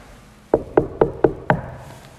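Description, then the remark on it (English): Five quick, evenly spaced knocks on a bedroom door in a rectory, fairly loud, each with a hollow wooden thud, followed by a brief quiet moment. “there will be a time where he'll kind of knock on my door.”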